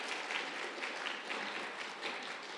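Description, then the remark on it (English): A church audience claps steadily for a guest preacher, a dense wash of many hands patting at once with no pauses, staying at an even, moderate loudness throughout. No one speaks over it. “Go ahead, let's clap for him.”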